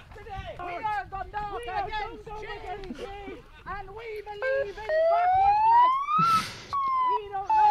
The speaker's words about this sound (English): Why does the siren kill me so much every time?